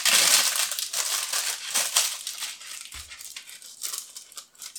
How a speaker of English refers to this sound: So we've got the paper with two folds underneath. Keeping the folds underneath, the paper goes into the tin. We push it into the corners.